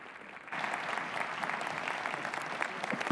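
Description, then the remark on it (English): A church audience breaks into steady applause to welcome a pastor coming to preach, dense overlapping claps swelling suddenly after a brief quieter moment and holding at a loud, even level throughout. “That's something to clap about right there, right?”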